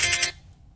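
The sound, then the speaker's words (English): A phone being called rings in a short burst of bright, buzzy electronic trilling, three quick pulses that cut off abruptly and leave a low murmur behind. “Put your phone on silent.”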